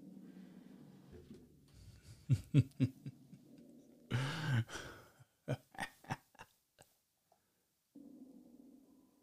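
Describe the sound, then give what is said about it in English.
A cuckoo clock with a single bird popping out calls in a series of short, hooting two-note bursts, loud, over a low background hum that drops away briefly near the end. “Cuckoo! Thing almost hits you in the face. The bird that comes out of it is just one.”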